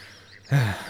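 A single short, nasal duck quack sounds fairly loud after a brief quiet moment, with no talking around it.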